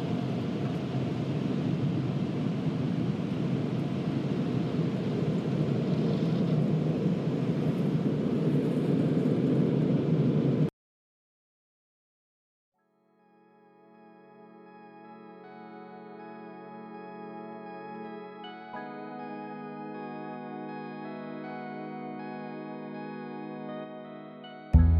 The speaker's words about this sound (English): And I'm about to go into the dryer tunnel, so hold on.